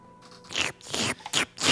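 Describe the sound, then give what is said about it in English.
A voice imitates lapping up beer, making a quick series of about five wet, smacking mouth bursts, with no talking. “He laps it up like a cat does.”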